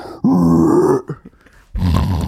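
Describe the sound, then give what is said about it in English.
A voice imitates a pig's squeal in two loud, raspy bursts: a long strained one with a slightly rising pitch, then a brief pause and a second, rougher grunting burst. “The fucking pig noise.”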